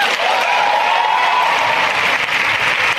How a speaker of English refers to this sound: They're cheering for degrowth.